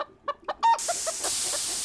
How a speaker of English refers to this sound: It's a steam-powered chicken.